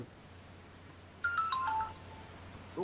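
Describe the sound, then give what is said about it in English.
A phone's email notification alert, from a phone sitting by the microphone, plays a quick descending run of bright electronic tones lasting under a second, clear over a low steady background hum, with no one talking. “That was an email. I've received an email.”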